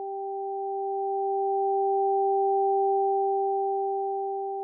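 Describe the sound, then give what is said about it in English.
A pair of pure electronic tones, one high and one low an octave apart, played through headphones, hums steadily and evenly for several seconds, swelling slightly mid-way, with no voices; a test from Diana's research on where listeners hear the high and low tones. “Diana's research eventually revealed that most right-handers hear the high tone on the right side.”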